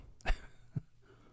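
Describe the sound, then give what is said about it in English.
A short, breathy sip of water, followed half a second later by a soft, low gulp as it is swallowed. Quiet and brief, with no talking. “Okay, a little sip of water there.”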